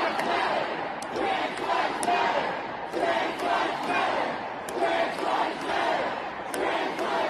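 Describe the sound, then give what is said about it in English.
A standing-room-only crowd of protesters chants in unison at lawmakers inside the Oklahoma State Capitol building, on the balconies and elsewhere, loud, rhythmic shouted phrases repeating in waves over a constant roar of voices, with a few sharp claps or bangs cutting through. “Like, the standing room only crowd on the balconies and elsewhere, chanting at the lawmakers.”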